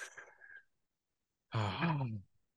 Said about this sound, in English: You want to relax? Take a deep breath.